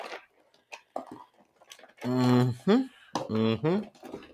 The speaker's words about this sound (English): I'll try to go get some headphones. Maybe I got some in my thing here. Hold on. Let me check my junk drawer here.